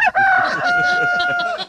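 rooster crowing

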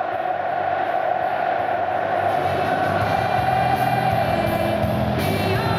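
stadium crowd roaring

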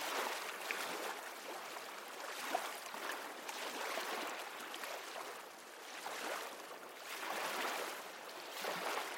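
ocean waves

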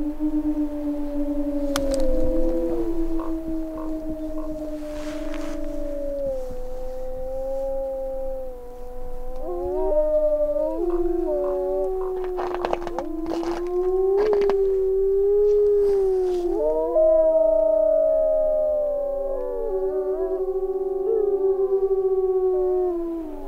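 wolves howling

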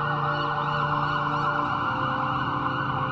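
ambulance siren

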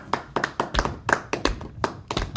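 one person clapping hands

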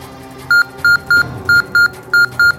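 electronic beeping

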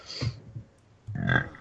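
loud burp

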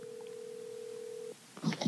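telephone call ringing through

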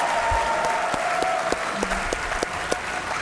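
audience applause

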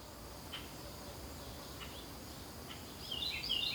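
crickets chirping at night

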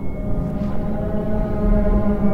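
whale call

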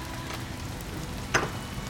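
rain

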